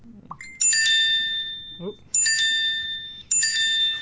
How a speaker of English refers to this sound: That's my waffle bell.